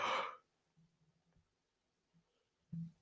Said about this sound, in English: So sorry, had to yawn.